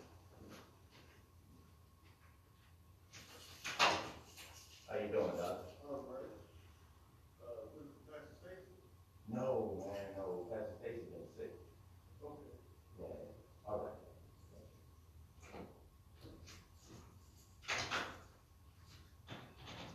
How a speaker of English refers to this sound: Open that door.